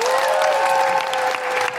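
Steady audience applause, a dense wash of many hands clapping at a fairly even loudness throughout, with no talking over it.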